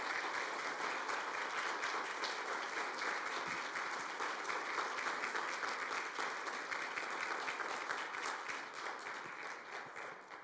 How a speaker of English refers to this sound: Northgate, you know the drill. Let's give her a round of applause for the work she's done.